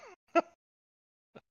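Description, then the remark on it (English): A cat makes a few brief, odd purring trills, short rolling chirps separated by quiet gaps, with no talking over them. “Weird purr.”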